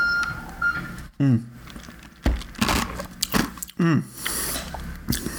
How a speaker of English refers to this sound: I mean, every time I say the word margarita, I have to take a sip. I'm sorry. It's just, it's bad juju if I don't do that. So cheers, everybody. A little sip here.